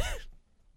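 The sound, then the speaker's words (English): A brief, breathy vocal exhale, like a stifled yawn, closes quickly into near silence. It's fairly soft, with a short wavering pitch before it cuts off. “I'm trying to fight back a yawn.”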